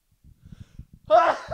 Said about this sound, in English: I got to sneeze.